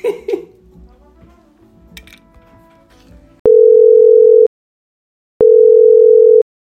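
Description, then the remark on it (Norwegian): Two loud, steady ringback tones of about a second each, separated by a brief silence, as a phone call to a neighbour rings out. Faint clattering and handling noises come just before. “Vi ringer da. Du ringer, vi bringer.”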